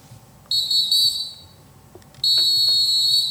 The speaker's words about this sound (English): Oh, that whistle is so sassy. You said the whistle is sassy? It is. That's a neck rolls whistle.